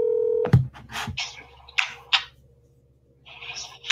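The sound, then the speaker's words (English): A steady telephone ringback tone on an outgoing call hums for half a second before cutting off, followed by sharp clicks, clatter and hissy bursts as the line picks up over a faint electrical hum. “It's ringing.”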